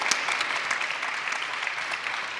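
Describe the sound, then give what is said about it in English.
An audience claps steadily for a couple of seconds, a dense, even patter of many hands with sharp individual claps popping out, no voices over it, voting for Kratos from God of War as best facial hair of 2018. “If you think Kratos had the best facial hair, give us a good clap.”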